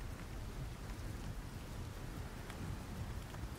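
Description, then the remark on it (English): Rain pounds steadily on a tin roof, a dense, constant hiss with sharper individual drop hits scattered through it. There is no talking. “Sound of the rain slamming into the tin roof.”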